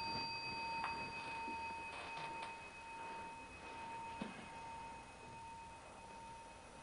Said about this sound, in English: When the bell rang, where were you?